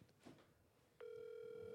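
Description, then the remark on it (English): A steady electronic phone ring tone, a call placed on speakerphone to the speaker's mother's other phone, starts abruptly about a second in and holds at a constant pitch, loud, after a moment of quiet background noise. “She got about 14 phones, so let me call her the other phone.”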